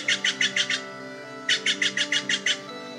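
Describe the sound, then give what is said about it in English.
Steller's jays flying all around the area give harsh, raspy squawks in quick runs: a burst of about five, a short pause, then seven more, fairly loud over a faint steady hum. “While I was preparing to try the trick, the Steller SJs were just going off, flying all around the area.”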